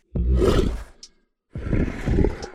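A lion roars twice, loud, each deep, rumbling roar lasting about a second, with a short silent gap between them.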